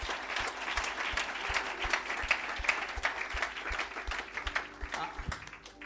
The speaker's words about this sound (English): Just a round of applause.